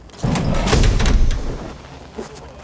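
A sudden loud whoosh of rushing air as a heavy door is opened, with a low thumping rumble, swelling for about a second and then tapering off, with a faint knock near the end.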